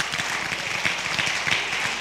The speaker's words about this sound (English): Some of you are giving the nice clap because that's what you know you're supposed to do.